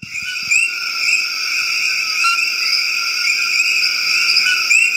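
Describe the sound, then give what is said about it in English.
A dense chorus of tiny coqui frogs gives steady, high whistling calls, with repeated short rising chirps layered over a continuous shrill hum. No one speaks. “It's a frog. It's a tiny frog. Wow. It makes a beautiful sound.”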